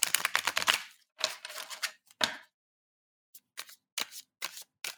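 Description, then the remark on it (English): Crisp riffling of tarot cards being shuffled in quick bursts, then a pause followed by a few separate soft snaps and slides as a card is drawn. No voices. “So I'm just going to shuffle and pull a card.”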